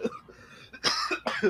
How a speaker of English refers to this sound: I caught COVID at Star Wars Celebration. I'm over it now, but I still have that cough. It's like, it won't go away.